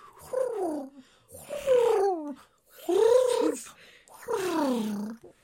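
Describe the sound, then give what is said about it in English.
Human voices imitate fantail bird calls: four squeaky, warbling, pitch-bending cries with short pauses between, fairly loud, coming across almost like a cat's meow. “Can we do the mantra in bird language? Yes, fantail.”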